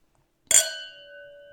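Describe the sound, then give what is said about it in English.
A single bright clink of wine glasses touching in a toast over an older red wine, followed by a clear ringing tone that lingers and slowly fades. Crisp, with no talking. “All right, cheers.”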